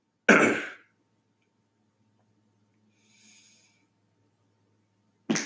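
fart

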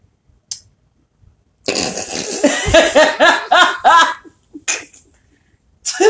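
burp into the microphone

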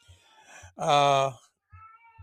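angry cat meowing

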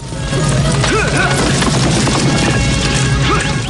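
horses galloping

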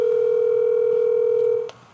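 telephone dial tone

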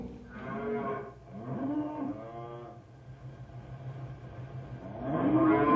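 cattle herd mooing

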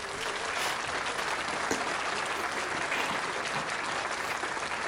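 applause

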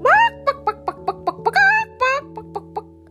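hens clucking

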